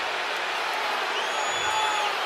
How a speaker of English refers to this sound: The crowd reacting to the replay of that call on the big screen.